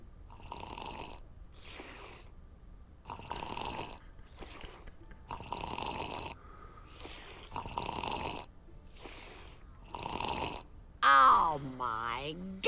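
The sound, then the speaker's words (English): Loud, wet slurping sounds made by a woman voice actress repeat in a steady rhythm, around seven long, noisy draws, followed by a brief vocal sound at the end. “Is angering God with her unholy slurping.”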